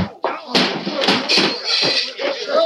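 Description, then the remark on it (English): A flurry of punches lands in a fistfight, one to the stomach and one to the chin: several sharp smacks and thuds in quick, uneven succession over constant scuffling noise, with no clear speech. “I'll knock your teeth down your throat. One for the stomach, one for the chin.”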